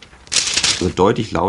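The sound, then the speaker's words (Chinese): A brief crinkling rustle of thin plastic film made of PLA (polylactic acid) being handled, fairly loud, quickly followed by a person speaking. “Das ist zum Beispiel eine Folie, die ist aus PLA。”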